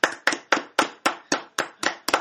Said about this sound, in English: It got 1.5 claps there.